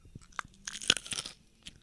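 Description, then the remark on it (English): Crisp crunching as someone bites into raw green beans from the garden, a few sharp snaps followed by wet chewing, loud, with no talking. “We're eating green beans. And and when she says green beans, they're like raw-ass green beans out of the garden.”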